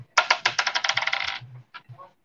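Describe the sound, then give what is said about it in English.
Dice clatter across a hard surface, rolled to predict a football score, a quick run of bright bouncing clicks that speed up and settle within about a second, followed by a couple of softer knocks. No one speaks. “I can't say anything other than a win personally, but I've got the dice, of course.”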